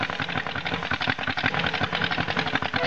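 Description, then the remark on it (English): A car engine, just started with difficulty on a cold morning, runs steadily at idle, a rough, rapid mechanical chugging with a constant rattling pulse that stays fairly loud throughout, with no voices. “Always a job to start on a cold morning, this car. Never mind, I'll get her going in it. Oh, she's off.”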